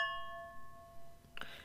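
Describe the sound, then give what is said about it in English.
Balloon-shaped wine goblets clink together in a toast, leaving a clear, bell-like ring that hangs and slowly fades before a brief second clatter near the end. Fairly quiet. “Those sound like church bells. These are... So we're drinking out of like really balloony wine goblets.”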